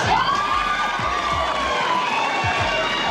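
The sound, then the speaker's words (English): An audience of women screams and cheers loudly and without pause, high overlapping shrieks blending into one sustained roar, with a few low thumps underneath. “These women would scream for anything.”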